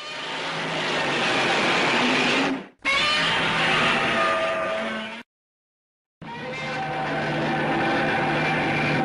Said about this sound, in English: So let's listen to the original Godzilla roar from 1950.